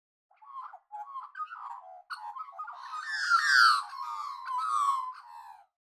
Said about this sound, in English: Yes, it's a type of bird. But what type of bird is that? I'll give you a hint. It swoops. A magpie. Yes, that is the sound of a magpie.